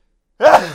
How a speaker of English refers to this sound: I was so afraid of the story that my terror came out in two giant sneezes.